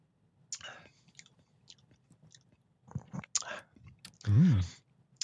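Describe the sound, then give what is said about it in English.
Wet mouth sounds of a person drinking a cherry, lemon and raspberry flavoured Mountain Dew soda: a few soft slurping sips followed by a louder gulping swallow near the end, with faint clicks and breaths and no speech. “Shall we do it? Okay. Here we go. Down the hatch.”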